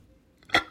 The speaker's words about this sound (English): Oh, that was a patented, copywritten burp. You will hear one.